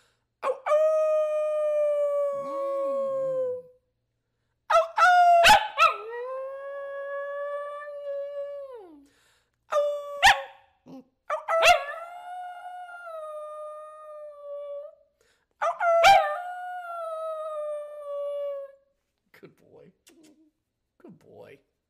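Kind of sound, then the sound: animal, dog howling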